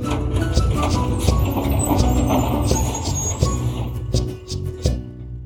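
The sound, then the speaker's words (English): A rickety old bus rumbles with a steady, loud engine drone, punctuated by rattling clanks and jolts as it bounces down a rough dirt road from high up in the Andes Mountains. “rickety old bus came bouncing down the dirt road from high up in the Andes Mountains.”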